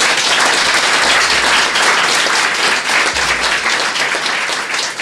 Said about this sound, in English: Please join me in giving Scott a round of applause.